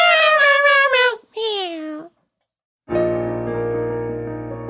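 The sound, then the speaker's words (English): A person imitates a cat, giving two drawn-out, wavering meows, then a brief silence before a steady, sustained musical tone begins. “Yes, cats, you can have some of the dollars. Meow, meow, meow, meow, meow.”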